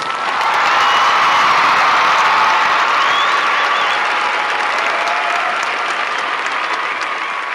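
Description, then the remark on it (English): A large crowd applauds steadily, a dense, sustained wash of many hands clapping at once for several seconds, loud and even throughout, with faint cheers mixed in. “And that applause was for all our listeners.”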